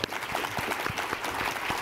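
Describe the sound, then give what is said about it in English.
A crowd applauds with steady, dense clapping, many hands overlapping into a continuous crackling patter at a moderate, even loudness throughout. “So how about we give a quick round of applause for our”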